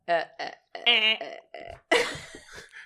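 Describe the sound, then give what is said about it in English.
A person imitates a goose, letting out a string of about six raspy, nasal honks in uneven bursts, ending with a longer, rougher honk that trails off. “Was that your honk? It is now.”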